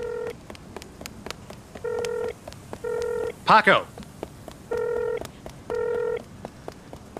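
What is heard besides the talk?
phone call dialing tones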